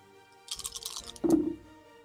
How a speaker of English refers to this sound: Please roll me 4d10 plus 6 bludgeoning damage. Ooh. Okay, coming right up. Ooh, I'll use my purple space dice for this. 4d10 plus 6? Yep.